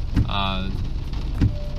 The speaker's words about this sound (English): What's going on up there? This is traffic? Jesus Christ.